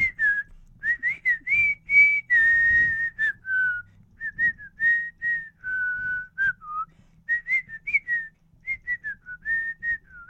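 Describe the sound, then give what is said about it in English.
A clear, melodic tune whistled continuously by several people for about ten seconds, with short sustained notes rising and falling in a steady rhythm, fairly loud, with no talking. “They're all whistling that dude.”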